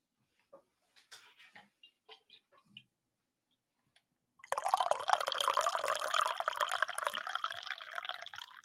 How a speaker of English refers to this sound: Sorry, it was kind of a weak pour. I had already poured. I had topped off a few minutes before going live. And then I realized my error.